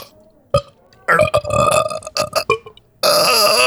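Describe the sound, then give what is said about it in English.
A loud belch breaks into a drawn-out, croaking burp with gurgling stops and starts, then a short pause before a final raspy burst. “That was mostly sorry, I cannot burp on command.”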